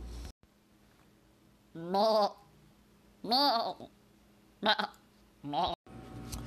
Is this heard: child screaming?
no